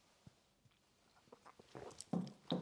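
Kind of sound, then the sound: food or drink, sipping wine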